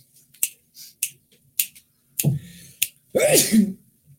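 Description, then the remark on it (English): A few sharp, snap-like clicks, then a loud sneeze with a sharp breathy burst and a voiced end. No talking. “I got to sneeze.”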